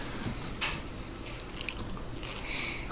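Someone crunches on chips during a live broadcast: a few crisp, bright bites at irregular intervals with softer chewing in between, and no one talking.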